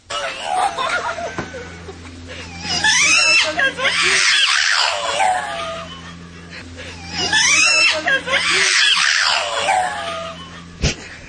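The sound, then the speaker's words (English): Monkeys shriek in two loud, shrill bursts of chattering cries, each lasting a few seconds with a short pause between, over a steady low hum. “Shrieking monkeys.”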